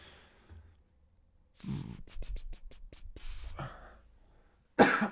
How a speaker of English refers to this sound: I'm pretty sure I've been developing this cough. It's not COVID. I haven't had COVID yet. And I don't have any other symptoms, but like for weeks, I've just had this like intermittent cough that I can't get rid of.